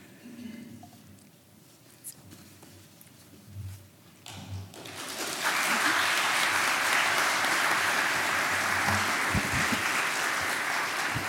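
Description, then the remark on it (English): A few quiet seconds give way to a crowd breaking into applause, a dense, steady wash of many hands clapping that holds at full volume until the end. “Well, I'm glad someone started clapping.”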